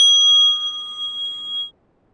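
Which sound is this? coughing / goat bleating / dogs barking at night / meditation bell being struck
meditation bell being struck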